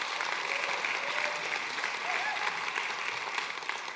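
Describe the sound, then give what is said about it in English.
An audience applauds steadily for about four seconds, a dense, even wash of many hands clapping at once with no single claps standing out. “You can clap for that.”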